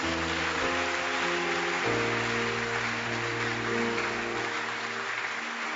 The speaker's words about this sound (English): And everybody will say aloud, Amen. Clap your hands.